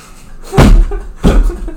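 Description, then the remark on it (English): Two solid knocks on wood, knocked for luck, spaced about half a second apart, each a loud, resonant thud with a short ringing decay. A faint background murmur sits underneath. “Knock twice on wood for luck.”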